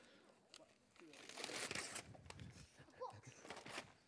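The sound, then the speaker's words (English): Wrapping paper being ripped off a Christmas present holding a large book, in a rush of crinkling, tearing bursts, loud, lasting several seconds, with faint voices in the background. “Who's good at ripping paper off?”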